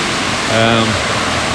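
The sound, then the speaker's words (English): Loud, steady rushing water pours through a mill race once driving two large water wheels, fed from the Bonnowen River about 1 kilometre upstream, a dense unbroken roar, with a brief voice sounding faintly over it midway. “we're standing here in front of the actual mill race. Your listeners can probably hear now the water, and a lot of water it is.”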